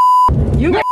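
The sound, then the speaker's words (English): A steady, high-pitched censor bleep cuts in, then gives way to a short burst of a woman talking about being cursed out with racial slurs by an Uber driver in South Carolina. The same loud bleep then returns to blot out the next words. “In between the beeps, a black woman says she is being cursed out with racial slurs by a white Uber driver in South Carolina.”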